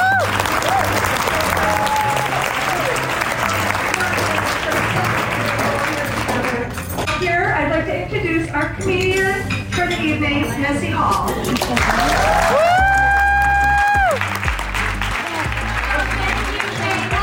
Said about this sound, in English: Before we dive in, I want to give you all a round of applause, and thank you.